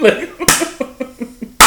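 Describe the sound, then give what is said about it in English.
Two sharp, loud hand claps land about a second apart, a deliberate slow clap, with short voiced laughing sounds in between. “That's a fucking slow clap.”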